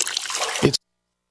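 A brief burst of water trickling and dripping, a steady splashy wash of sound that cuts off abruptly after less than a second, with no voices.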